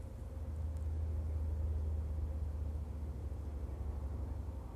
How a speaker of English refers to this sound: Lots of cars.